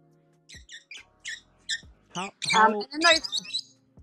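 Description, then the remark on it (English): Australian magpies calling outside: a run of short, high chirping notes, then louder, rich warbling calls that overlap, clear, with no talking. “And then those other ones that you could hear as well were just magpies.”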